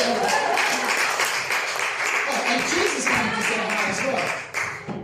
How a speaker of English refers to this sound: Let's give him a clap. Come on.